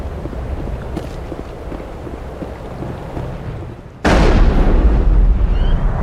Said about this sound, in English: I see Rex shooting his gun into the water, but the water doesn't actually splash.